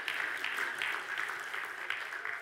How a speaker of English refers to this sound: All right, if you're going to clap, clap. There you go.